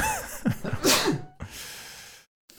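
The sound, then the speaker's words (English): A single sneeze: a few quick, rising gasping inhales build into one sharp, explosive burst, followed by a long breathy exhale and brief silence. “I'm going to sneeze, so hold on.”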